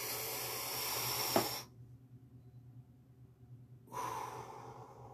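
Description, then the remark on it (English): A deep breath drawn in as a sacred breath during prayer, a breathy hiss that stops abruptly, followed by a quiet pause and then another airy breath near the end. No one speaks. “Say, I'm breathing in the white, pure light, sacred flame.”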